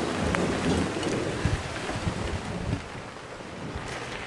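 A thunderstorm on a cold, stormy Thursday night: a dense, steady hiss of heavy rain with low thunder rolling and rumbling beneath it, plus some gusty wind buffeting, and no voices.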